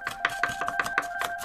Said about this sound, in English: Now, let's chop it up and add it to the fruit bowl. Everybody turn your hand sideways and start chopping.